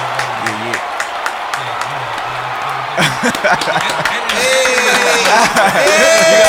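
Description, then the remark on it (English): A crowd cheers and applauds, a dense wash of clapping that swells louder partway through, with scattered whoops and shouts rising over it and a faint low hum beneath. “You gotta put the whole crowd in there.”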